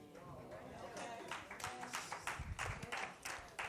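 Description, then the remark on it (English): Scattered, sparse claps from four audience members, irregular and uncoordinated, with a faint murmur of voices underneath. “Now, only four people was clapping.”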